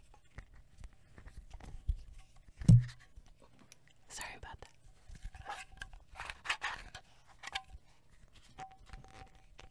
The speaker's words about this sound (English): It's my dog walking around.